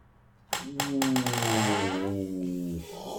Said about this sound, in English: By the way, if anyone's wondering what that creaking sound is, it's my office. It's my, like, spinny chair. It needs to be oiled.